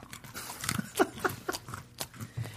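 Crunchy chewing of beer nuts, with irregular bites and crackling crunches repeating over a couple of seconds, fairly quiet and with no talking.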